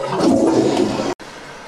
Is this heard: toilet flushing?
yes